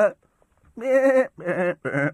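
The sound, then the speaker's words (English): A voice imitates sheep bleating, giving three drawn-out, wavering "baa" calls, the first after a short pause and the last two following quickly. “you saw them in the film Babe, where the sheep, bah, bah, they don't know anything”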